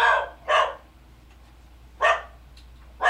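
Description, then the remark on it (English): A dog barks four times in two quick pairs, sharp, with short quiet gaps between the barks and no talking. “Pausing for dog.”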